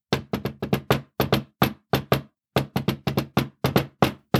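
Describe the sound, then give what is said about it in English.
Sharp knocks on a desk, rapped out by hand to the rhythm of a song for a guessing game, with quick clusters and short pauses between phrases, fairly loud, no talking. “I have a song in my head, and I'm going to knock out the rhythm of that song on my desk,”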